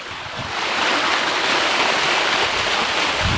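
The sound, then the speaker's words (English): A small stream of water rushes and splashes steadily like a little waterfall, fairly loud, a continuous hiss-like flow that fills the whole moment with no voices. “Shit, it's like a little waterfall, actually.”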